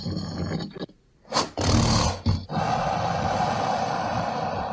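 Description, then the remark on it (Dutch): A low, breathy grunting burst of air, like a deep animal snort or roar, rising loudly for a couple of seconds between quieter rumbling stretches. “Het is eerder een luchtstoot die een beetje, waar een beetje klank aan toegevoegd is.”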